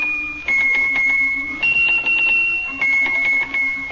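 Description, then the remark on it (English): Small Swiss hand bells, picked up and shaken one at a time by a little mouse, ring out a simple tune, each bell a different note held briefly before shifting pitch, with a faint jingling shake between notes. Fairly loud, no voices. “They're little teeny bells, and when he picks one of them up and shakes it, it makes a note.”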